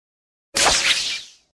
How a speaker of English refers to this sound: It's a web sling from Spider-Man.